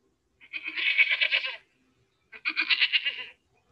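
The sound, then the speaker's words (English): Two loud, drawn-out goat bleats from a YouTube clip, each lasting about a second with a wavering, quavering tone, separated by a short pause, clear, with no talking. “That was a YouTube clip of goat sounds”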